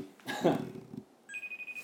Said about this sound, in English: We're gonna FaceTime. FaceTime who? Whom? Phone still ringing? Wait for it.